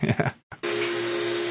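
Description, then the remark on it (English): A brief voice, then a short pause before a large vacuum forming machine kicks on with a loud, steady rush of air drawn out to form a plastic cabinet over a mold, a constant whooshing roar with a low mechanical hum underneath. “all of a sudden just draws all that air out and forms that cabinet.”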